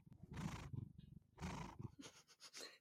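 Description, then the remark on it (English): A cat breathes right up against the microphone, giving rough, breathy huffs: two longer gusts followed by a few quicker, shorter puffs, with no one talking. “your cat is such a fucking attention whore. You're just like your parent. Excuse the fuck out of you. Breathe into the microphone.”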